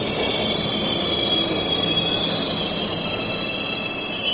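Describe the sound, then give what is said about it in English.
A subway train heading north past Central Park toward Harlem rolls steadily along the rails, its wheels letting out a continuous high metallic squeal over a dense, rumbling roar. No voices, just the sustained noise of the moving train. “Say, take a subway north, past Central Park, past the Uppies, past Woody Allen's Upper East Side, past 110th Street and into Harlem.”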